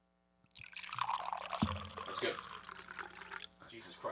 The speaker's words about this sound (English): Okay, let me pour. Let's one more pour now.